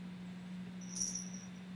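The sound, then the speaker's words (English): A small bell on Sansa, a leashed cat, jingles faintly once, a brief high tinkle lasting a fraction of a second, set against a steady low electrical hum with no talking. “Are there, like, sleigh bells underneath you, Tommy?”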